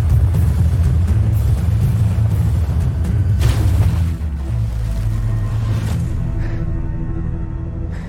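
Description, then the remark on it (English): A backwards fall out of a helicopter on Fox's Special Forces: World's Toughest Test in the Wadi Rum Desert of Jordan: a loud, steady low roar of rotors and rushing wind, a brief hissing burst about halfway, then a slightly softer rumble. No one speaks. “So that was me falling out of a helicopter, which was something I did backwards on the Special Forces, world's toughest test that you're going to see me and 15 other people going through in the Wadi Rum Desert of Jordan next Wednesday at 8 o'clock?”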